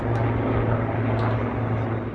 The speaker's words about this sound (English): That helicopter that was flying behind me over the East River, that was a military helicopter.